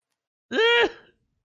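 One short, husky cough from a woman in a Bollywood film, fairly loud, standing alone with silence before and after it.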